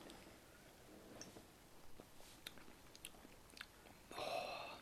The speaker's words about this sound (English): So I'm very excited about this, and I'm going to go in for my first sip.